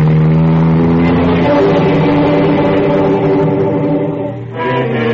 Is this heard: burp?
no